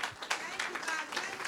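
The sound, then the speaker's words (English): An audience applauds: dense, steady clapping fills the whole moment, with scattered voices and cheers mixed into the crowd noise. “The applause should be even stronger.”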